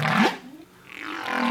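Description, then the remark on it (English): Two drawn-out, wavering whale calls, the first a bright descending cry and the second a rising moan after a brief lull, heard clearly on their own with no talking. “Oh, you don't have any whale noises?”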